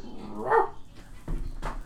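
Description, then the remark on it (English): A dog barks three times in quick, uneven succession, moderately loud, with a slightly whiny, yipping edge and no voices over it. “Cut your shit, dog!”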